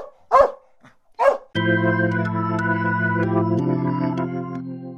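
A trained dog lets out two sharp barks at a man about a second apart, then a steady, sustained musical chord swells in and carries on to the end.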